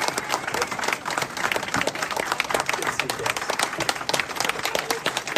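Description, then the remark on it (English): Audience applause for Candace Owens fills the whole stretch, a dense, steady wash of many hands clapping at once, fairly loud and even throughout, with no talking over it. “Candace Owens, my friend, a round of applause.”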